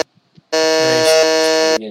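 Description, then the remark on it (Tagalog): A harsh, sustained electronic game buzzer on a website blares loudly for over a second, a rich rasping tone that cuts off abruptly, preceded by a few faint clicks. “Clear buzzer. 1, 2, 3, go.”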